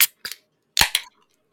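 Cans of Mighty Glad, an 8% double IPA from Deciduous Brewing Company of New Market, New Hampshire, cracked open: four sharp, snappy pops in two quick pairs, the second pair louder, with a short fizzy hiss trailing off after them. No one speaks.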